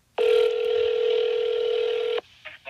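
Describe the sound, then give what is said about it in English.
A phone line rings once through the earpiece, a steady electronic tone lasting about two seconds, then it cuts off and a few faint clicks follow. “Here is my phone call conversation from earlier today.”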